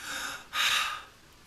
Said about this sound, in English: Like if you want to know if somebody still is, still alive, they're still breathing, that probably is as old as humanity is, to know whether someone is breathing, and that has to do with being, still being alive.